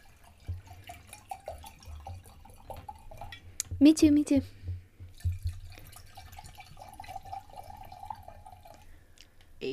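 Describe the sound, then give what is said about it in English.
A short burst of a fruity drink pouring into a cup, gurgling briefly, with low background hum and people talking quietly around it. “I'm going to put more in my cup. Now we'll listen to the panda pour.”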